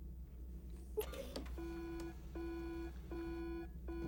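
A sample-testing machine in the film Gattaca sounds an electronic alarm, beeping repeatedly in a series of steady, evenly spaced tones, fairly loud over a low background hum, preceded by a brief clatter, because the sample tested is a hot sample.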